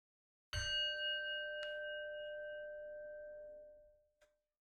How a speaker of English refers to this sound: Let's gather together with a bell.